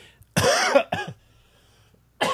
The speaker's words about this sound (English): Still coughing. Man, irritating.